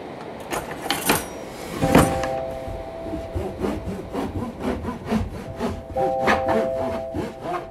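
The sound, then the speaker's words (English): A knife saws through a crusty homemade sourdough loaf, with a steady rhythm of rasping back-and-forth strokes and faint squeaks. There is no talking. “That was some of the sounds of me slicing my homemade sourdough, because like so many other people during this pandemic quarantine time, I decided it'd be a good idea to get into sourdough bread baking.”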